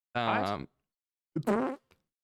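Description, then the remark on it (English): Two short bursts of a fart-like whooshing noise from an audio glitch on a call participant's connection, with a brief gap between them, the first slightly longer, both fairly loud, ending with a tiny faint click. “I think he farted when he did.”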